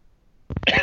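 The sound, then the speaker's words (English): A short, dry cough erupts after a moment of near silence, a couple of quick harsh bursts with no talking. “Is that a dry cough? Yes, it is.”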